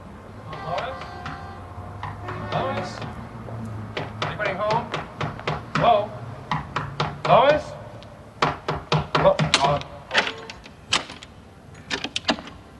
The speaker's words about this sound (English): for goodness sake, didn't you hear me knocking?